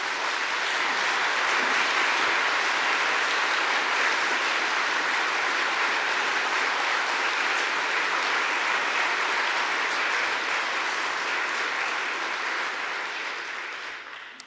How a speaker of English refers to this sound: They deserve a huge round of applause for putting this together. It was no small work.